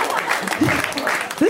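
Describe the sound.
An audience at a live show claps in a steady, dense patter of many hands, loud, while voices talk over the applause.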